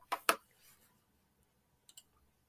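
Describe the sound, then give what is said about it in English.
A computer mouse that is not working well clicks twice in quick succession, sharp, then after a pause two softer, quicker clicks follow. No one speaks, and the background is otherwise quiet. “My mouse is not working well today.”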